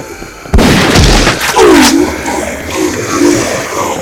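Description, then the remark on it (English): A loud, sharp shotgun-like blast from a 'sonic boomstick' cracks out suddenly, followed by a rumbling low thump and a lingering rough tail with faint whistling tones. No one speaks. “Doctor, that looks, and I know appearances aren't everything, a lot like a pump-etching shotgun.”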